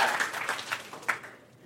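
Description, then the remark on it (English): A short burst of audience applause: many hands clapping in a dense, crackly patter at moderate volume, with a few sharper claps standing out before it thins slightly toward the end. “Round of applause if you thought this guy might be kind of a stoner.”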